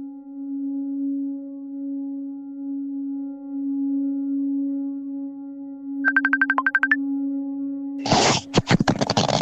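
A steady electronic telephone ring tone hums continuously, joined briefly by a rapid warbling trill, then cut off by a loud rustling clatter as the line is picked up.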